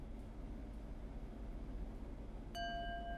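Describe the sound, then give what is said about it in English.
A single bright chime from a meditation app on a tablet, in a short demo session, rings out after about 15 seconds, near the end, its clear tones sustaining over a steady low rumble of background noise. No one speaks. “Right, and so after you hear the chime, after that was maybe 15 seconds, you just indicate with the button press whether you were able to maintain your attention or not.”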